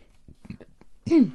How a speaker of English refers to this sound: Burping. I'm so sorry. I've never, like, burped this much on a podcast. I'm so sorry, you guys. I've just now finished my beer.